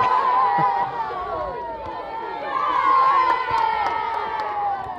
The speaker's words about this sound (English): The kids cheering on as the goalkeeper can't get the ball from the roof of the net. So Chase Town to go 3-2 up.